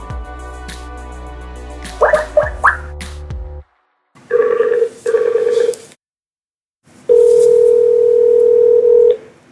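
A phone is dialed with a quick series of keypad tones, then a steady buzzing ring sounds twice, followed by a longer single ring tone. No one speaks.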